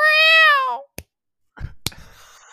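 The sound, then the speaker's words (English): A single loud, drawn-out cat meow that sinks in pitch at the end, followed by a sharp click and a short burst of clattering noise. “Yeah, there was some real character in that meow.”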